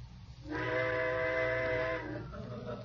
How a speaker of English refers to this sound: Trains. I suppose they're going to blow all night now. Well, go ahead, blow.